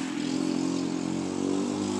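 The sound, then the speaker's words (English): A motor scooter engine buzzes loudly as the scooter goes fast, a steady high-revving drone that holds for about two seconds with no voices over it. “You see that scooter go fast?”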